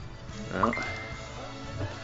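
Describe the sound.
A dog wanting to come in gives a brief, high whine and a yelp, faint, against a low background hum with faint voices.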